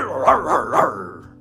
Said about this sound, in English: My dog up in here.